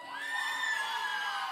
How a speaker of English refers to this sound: Don't cheer. Don't cheer. No, don't cheer for that. Don't cheer for the Falcons.